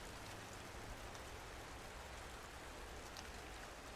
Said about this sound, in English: Rain's picking up.